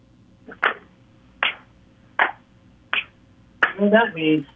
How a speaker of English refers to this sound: You know what that means. You know what that clap was, right? Is it the Gator clap? Yep.